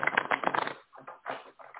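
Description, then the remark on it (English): A crisp riffle of cards being shuffled: a dense burst of rapid flutter, then a short pause and a few softer, uneven rustling bursts. “So let me shuffle these cards and see what comes out.”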